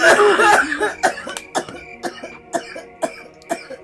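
Someone clears their throat with a loud, harsh rasp, followed by a string of shorter, evenly spaced hacking bursts that gradually soften.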